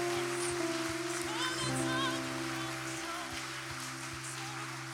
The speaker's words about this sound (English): Let's lift up one more hand clap of praise to our God who is so worthy and so deserving.